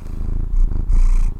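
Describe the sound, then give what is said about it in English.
A cat purrs right up against the microphone, a loud, close, rumbling drone that swells in two strong pulses with a brief dip between them, with no voices present. “a kitty cat purring into the microphone”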